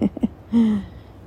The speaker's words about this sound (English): And I can hear the lake snap, crackle, popping.